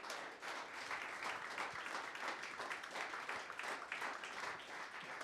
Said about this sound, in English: A round of applause